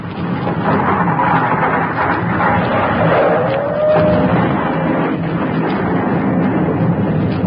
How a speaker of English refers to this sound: Hey, what's those noises? The sacred city's gone. It's blown up.